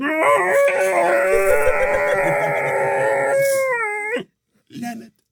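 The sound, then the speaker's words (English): A person imitates a monster's wailing cry while doing an ape swing at the top of a hill: a loud, sustained, howl-like wail held for about four seconds that cuts off abruptly, then a short grunt-like vocal sound. “I don't know if you watch Star Trek, remember the salt monster?”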